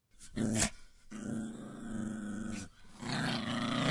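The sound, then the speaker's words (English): A large Rottweiler dog in a kitchen growls low and rumbling in several sustained bursts, fairly loud, with brief pauses between the menacing snarls. “I think he's a Rottweiler.”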